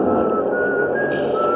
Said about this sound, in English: The door's closed behind me and everybody in the car is rushing to find a seat. Over the noise, I hear some contented soul whistling.